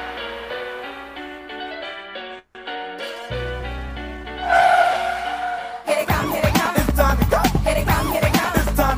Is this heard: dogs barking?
no